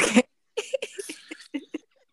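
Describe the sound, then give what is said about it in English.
A single sharp, loud sneeze bursts out, followed after a brief pause by a string of short, choppy vocal bursts that trail off into silence. “I'm trying to bless you.”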